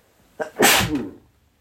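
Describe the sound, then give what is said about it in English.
A single loud sneeze with a short sharp intake of breath followed by a bright, hissy burst that fades within about a second; no talking. “I gotta sneeze.”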